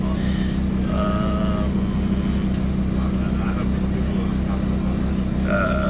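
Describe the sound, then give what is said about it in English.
Steady low engine rumble and road drone fill the cabin of a moving bus just arriving in Phoenix on its way to a hotel, with faint whining tones rising now and then over the constant hum; muffled voices may sit underneath. “We're on the bus traveling to Phoenix.”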